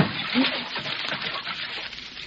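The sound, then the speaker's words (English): Water splashes and sloshes heavily as a person lying in a filled bathtub goes under when their feet are jerked up, with a churning, turbulent wash that stays steady for a couple of seconds. “you can come out from under the water now”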